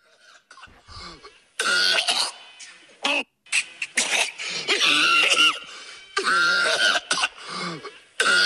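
A gross, phlegmy cough erupts in a series of loud, close bursts, broken by short pauses and ragged throat-clearing, with no talking over it.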